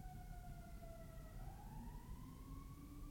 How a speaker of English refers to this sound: I'm recording in my car. You can hear the sirens.